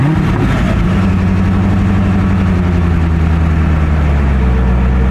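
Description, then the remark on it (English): The engine of a new Corvette C8 convertible sports car rumbles loudly, its deep throaty idle holding steady with a slight rise in pitch, with no voices over it. “I bought a new Corvette.”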